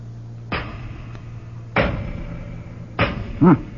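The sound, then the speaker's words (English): A hammer strikes solid doors three times to test how thick they are while trying to get them open, about a second apart, each blow a loud, sharp bang with a short ringing decay over a steady low hum. A brief wavering tone follows the last strike. “Let's see how thick they are. Throw me a hammer, would you?”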